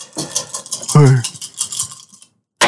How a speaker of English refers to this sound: Yes. That's a lot of dice. Woo! That's a lot of dice.